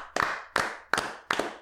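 Four sharp hand claps in a slow, steady rhythm, each with a short ringing decay, moderately loud, with no voices.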